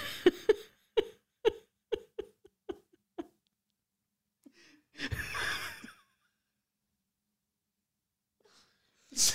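A run of short, rhythmic breathy bursts gives way to a drawn-out, airy yawn that swells and fades over about a second, fairly loud, with no talking.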